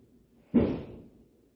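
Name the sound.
fireworks going off outside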